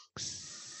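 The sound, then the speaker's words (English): Bacon sizzling in a pan starts abruptly after a brief silence, a loud, steady, bright hiss with a faint crackling texture running underneath and no voices. “It's the sound of bacon cooking.”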